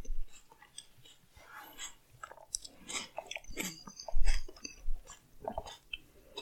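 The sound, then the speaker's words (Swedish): Chewing a cherry tomato with the mouth closed, about 40 chews: a steady run of soft wet squelches and small crunches at a quick, even rhythm, with a few louder bites partway through and no talking. “Jag hörde typ, jag tuggade säkert en 40 gånger.”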